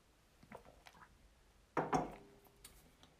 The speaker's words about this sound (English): So let me have a sip here.